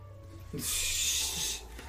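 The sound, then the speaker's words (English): A cat retches just before throwing up, a harsh, breathy hacking rasp lasting about a second over a low steady background hum. “Jack's gonna throw up here in a minute.”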